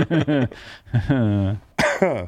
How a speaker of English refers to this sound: I just coughed.